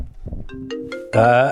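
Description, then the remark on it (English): A short electronic phone ringtone for an incoming call sounds: a few clear tonal notes rising in steps, then a louder, brighter burst that holds briefly before cutting off. “we have a phone call coming in.”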